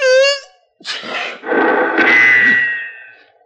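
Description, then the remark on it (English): A drawn-out, pitched intake like the start of a sneeze breaks into a sharp burst. Then a loud gunshot, fired at the sound of the sneeze, rings out, and its blast slowly fades. “Serves you right for sneezing.”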